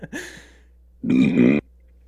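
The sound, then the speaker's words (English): A loud belch rumbles for about half a second, low and gravelly, after a short throaty breath and a moment of quiet. “Please edit these farts and belches out.”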